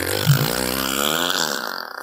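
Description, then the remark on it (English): A voice blows a long, buzzing raspberry lasting about two seconds, a fart imitation with a rough, fluttering tone that stays fairly loud before trailing off. “He's a fart man. Fart. He farts.”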